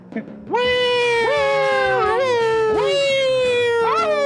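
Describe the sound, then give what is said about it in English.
A person imitates a howl with their voice: three loud, drawn-out wails that swoop up, waver and slide down in pitch, one after another, with no other talking. “All right, howl like a dumbass.”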